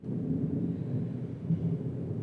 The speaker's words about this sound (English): A little thunder in the background there.